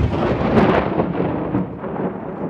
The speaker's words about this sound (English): With these spells, the entire pub exploded in a way that would make Michael Bay wet himself with pleasure.